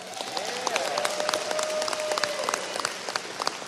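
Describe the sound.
Scattered audience clapping, a steady patter of many hands at moderate volume, with faint background voices and a thin sustained tone running underneath, as the audience claps to show how many of them know about ScriptTalk.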